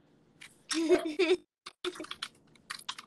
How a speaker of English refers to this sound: We can hear your keys ticking.